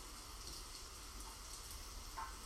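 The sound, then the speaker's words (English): Steady, soft rain hisses evenly across the whole stretch, a quiet continuous wash of falling water with no voices and no distinct drops standing out. “Hearing the rain in the background.”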